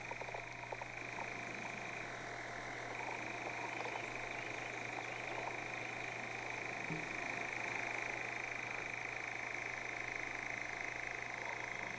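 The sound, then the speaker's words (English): A nightjar's churring runs without a break, a steady mechanical trill like a spinning wheel that holds the same pitch throughout, with no voices and a low hum underneath. “So, for the third fucking bird clip that I have this episode, for some reason, here's the sound of the wheel spinning nightjar sound that they were talking about.”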